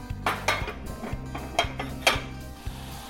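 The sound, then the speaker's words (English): A metal pot of water on a stove being brought to a boil gives off a steady low hum, with several sharp clinks and taps of metal over about three seconds, with no one speaking. “Okay, I'm gonna bring this to a boil.”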